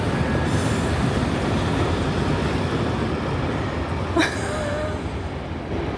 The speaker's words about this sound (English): At the same time as a really loud train.